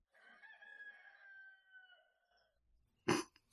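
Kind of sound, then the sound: bird, rooster crowing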